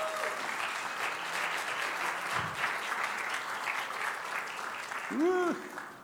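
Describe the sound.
An audience breaks into sustained applause welcoming a missionary couple back from Thailand, a dense steady wash of clapping lasting several seconds, with a few brief voices and a whistle-like cheer rising near the end.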